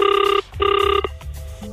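A phone line rings on an outgoing call from radio station 947: two short, bright warbling rings in quick succession, clear and fairly loud, followed by a brief click and low line noise.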